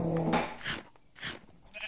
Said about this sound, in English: There are the sheep.